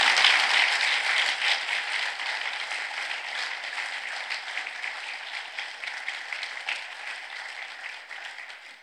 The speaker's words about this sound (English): How about one more round of applause for our police students?